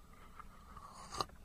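A quick slurp of tea: a brief, hissy sucking burst near the end, rising out of a quiet, rustling background with no one speaking.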